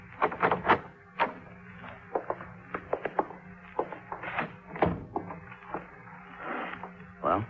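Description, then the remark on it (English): A hotel room door at the Prince Hotel is tried, its handle rattled with a run of sharp clicks and knocks, then the door creaks open, fairly quiet with no talking. “knocked on the door. Gorrell? Gorrell? It's Dollar. Try the door.”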